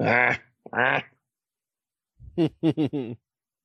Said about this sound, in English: Because technically, they're in their own yard. But it's all times of night and they're going off barking at everything that moves.